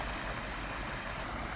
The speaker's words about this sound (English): I'm sitting above the creek again. Potash Brook. It was kind of calling me this morning.